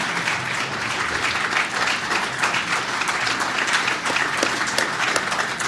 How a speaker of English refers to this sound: He does deserve applause for that, because he has turned it around.